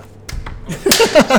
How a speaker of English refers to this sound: Give us a clap.